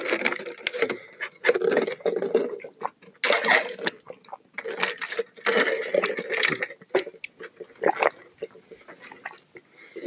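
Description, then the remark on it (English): Wet mouth sounds of someone sipping and swallowing water, with repeated slurps and gulps in an irregular rhythm, loud. “Water tastes like regular water, and that's pretty neat.”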